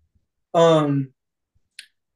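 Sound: computer mouse clicking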